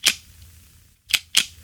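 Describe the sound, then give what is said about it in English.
Three sharp plastic camera shutter clicks, the first on its own, then a quick pair about a second later. Each is a bright, snappy transient with a brief rattle, with no voices. “So it sounds kind of like plasticky kind of shutter sound, which is a kind of weird sounding, but kind of reassuring.”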